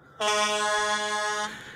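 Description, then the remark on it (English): A single sustained vehicle horn blast outside, steady and loud, lasting a little over a second before cutting off, with no talking around it. “You weren't allowed to honk your horn after 8 o'clock.”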